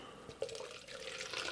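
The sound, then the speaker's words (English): Weather Beacon Red beer pours into a Krampus cup in a steady, bubbly stream, a soft gurgling splash that rises slightly in brightness as it fills, with a small clink near the start. “Gotta fill up the Krampus cup.”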